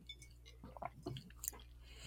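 Wet mouth sounds of someone taking a very long sip of a Moscow Mule cocktail and crunching ice in the mouth, with soft squelches and clicks over a quiet background hum. No one speaks.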